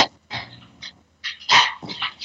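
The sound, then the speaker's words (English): A dog barks and growls in a run of several short, rough vocal bursts, with brief pauses between them and no talking. “The dog making noise again.”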